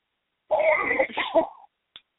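A single rough throat-clearing cough from someone with something stuck in their throat, raspy and voiced, lasting about a second, followed by a brief faint click. No one speaks.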